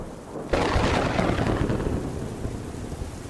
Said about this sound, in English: It was raining hard now. Couldn't hear anything but the falling water and loud thunder.